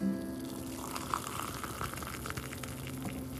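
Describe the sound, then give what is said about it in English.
A steady stream of hot liquid pours from a small red teapot into a coffee mug for a morning cup of Nescafé, a continuous trickle and splash with a slight rising fill tone, no voices. “And yes, I burn my finger every single morning, my cute little red little teapot pouring into my favorite coffee mug, XOXO.”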